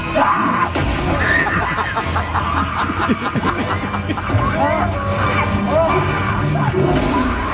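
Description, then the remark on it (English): Frantic screaming and rough growling from a clip of the film Cocaine Bear, in a dense, chaotic mix, loud and continuous throughout, with snickering laughter breaking in over the top. “Screaming, growling, blood, guts, gore.”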